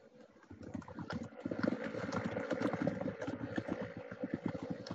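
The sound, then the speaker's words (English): Rapid, uneven clatter of keyboard typing by someone looking something up, fairly loud, with a rolling rhythm that resembles a horse's hooves galloping. No speech is heard. “You're typing, right? But it sounds like a horse galloping.”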